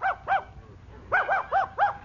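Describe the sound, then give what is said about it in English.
A dog barks six times in a courtroom during a hearing over its custody: two quick barks, a short pause, then a faster run of four, each sharp and tonal with a slight yelping edge. “Bailiff, have the dog brought in.”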